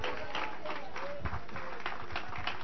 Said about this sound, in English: Clap your hands if you want him to stay.